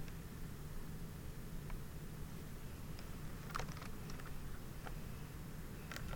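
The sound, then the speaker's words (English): Soft, scattered keyboard clicks tap out at an irregular, unhurried pace as someone types a Facebook message, over a steady low background hum, with a few keys struck in quick clusters and no one talking. “Now I'm typing on Facebook to a person who asked me for my number.”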